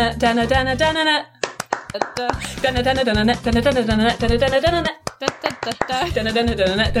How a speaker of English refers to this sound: It doesn't really work with the sync, but I will edit this so we're all clapping perfectly in time.